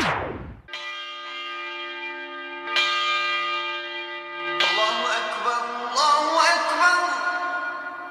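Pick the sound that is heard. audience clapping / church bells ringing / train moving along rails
church bells ringing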